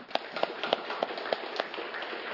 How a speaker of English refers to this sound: And so give them a clap, guys.